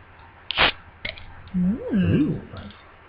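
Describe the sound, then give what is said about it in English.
A sharp hiss-pop of a cap coming off a bottle of barrel-aged wild ale, a sour beer, followed by a smaller click, then a person makes a wavering, sing-song vocal sound. “All right, so here comes the pop.”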